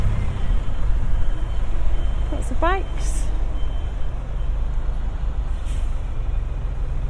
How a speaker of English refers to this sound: There's a bus to my left, backing up.